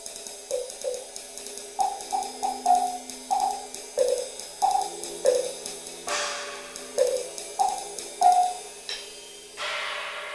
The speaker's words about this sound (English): I have some chimes from Korea. Korean chimes. Some Indian bells. And I also use some woodblocks and other kind of bells